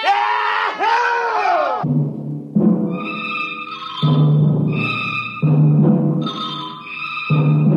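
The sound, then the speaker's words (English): A rowdy group of men shouts and whoops in celebration, loud, their overlapping yells rising and falling in bursts across the whole stretch. “The voices got louder. The Earth laughs and shouts echoing across the empty Martian sands.”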